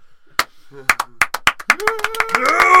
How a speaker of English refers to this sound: And all the porcupines, like, stand up on their hind feet, and then they slowly start to slow clap.